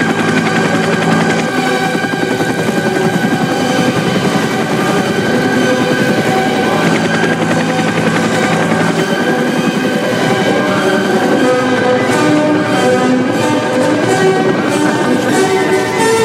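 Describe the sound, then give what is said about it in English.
A loud, dense wall of sound from a film scene: helicopter rotors thundering overhead as the helicopters attack, while bursts of rapid machine-gun fire rattle through, sustained and unbroken for the whole stretch, with no one speaking. “As they just bomb in on their choppers.”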